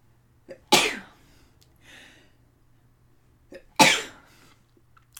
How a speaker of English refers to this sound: I might sneeze, folks. I'm feeling it.